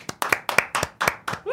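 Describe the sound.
Hand clapping in a quick, steady rhythm, about a dozen sharp claps falling in loose pairs, fairly loud, with a short voiced sound cutting in at the very end.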